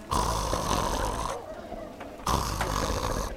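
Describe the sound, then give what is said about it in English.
A person imitates the deep, rumbling snores of huge sleeping frogs with the voice, two long snoring breaths separated by a quieter pause, fairly loud. “Can you snore like the frogs?”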